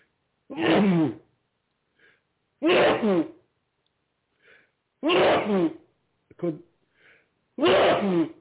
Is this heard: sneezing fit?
yes